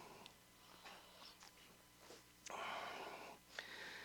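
A sneeze bursts out after a couple of seconds of faint breathy sounds, a sharp noisy blast that trails off, followed by a quick snuffling sniff. No one speaks.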